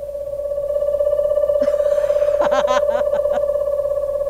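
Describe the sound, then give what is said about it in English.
A voice imitates an owl with a short run of breathy, wavering hoots over a steady, high electronic tone that hums through the whole clip. “Here is what an owl sounds like.”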